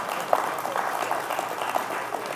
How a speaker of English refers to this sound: That's five people clapping. I really appreciate that.